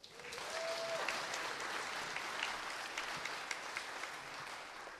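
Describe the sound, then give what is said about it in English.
An audience gives a big round of applause for two people who fixed something, clapping steadily for several seconds, a dense, sustained wash of applause with a few sharper individual claps standing out near the end. “A big round of applause”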